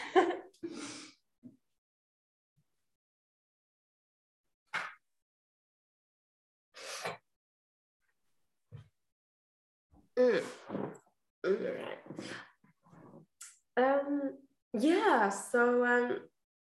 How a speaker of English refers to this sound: Sorry, I will actually quickly blow my nose.